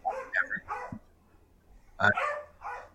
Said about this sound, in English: are those dogs in the room with you?